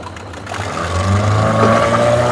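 A motor cruiser's engine drones steadily across the water of a fjord as it turns a corner and heads toward a small boat, its low rumble growing slightly louder as it draws nearer, with no voices present.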